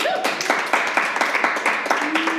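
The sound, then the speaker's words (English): A crowd claps steadily for Kamala Harris, with many hands striking in a dense, continuous patter that fills the whole stretch, and a few faint voices or cheers rise underneath. “Kamala Harris, please clap.”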